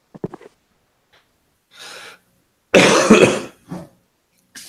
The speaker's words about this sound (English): coughing in the microphone when he's talking about going to Japan. You almost blew it. I was muting it every single time.